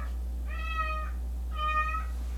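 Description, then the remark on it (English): A cat meows twice in a steady, drawn-out rhythm, each call clear, with a low constant hum underneath and no talking. “We got a cat. Kaori is voicing her opinions”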